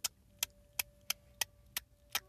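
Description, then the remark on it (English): A tongue click, the dental C click of Xhosa, is repeated about seven times at a steady pace. Each click is a sharp, crisp, bright snap with no talking around it. “Hey, there are three types of clicking. First, it's the X. X and normal when I say Nosa. And then next is C.”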